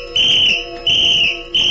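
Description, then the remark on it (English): A shrill tin whistle blown in three sustained, piercing blasts, one after another with short breaks, loud with no voices. “I took advantage of every opportunity to express my defiance through its shrill voice.”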